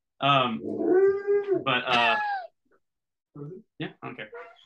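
A dog howls in long, wavering, tuneful notes for about two seconds, then after a short pause lets out a few shorter yelping howls, fairly loud.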